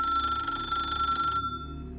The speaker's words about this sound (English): She almost jumped out of her skin when the phone rang.